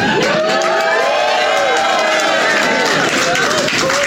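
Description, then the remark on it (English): A dense, steady roar of crowd cheering fills the whole clip, loud and continuous, with many overlapping voices whooping and some scattered clapping, sounding like a canned audience track. “It sounds like there's even more people.”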